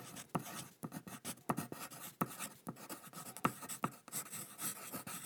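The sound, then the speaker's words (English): A pencil scratches across the paper of a sketchbook in quick, irregular strokes, with short pauses between bursts of sketching. Fairly quiet, with no voices. “But this time, they'll leap from his pencil onto his sketchbook.”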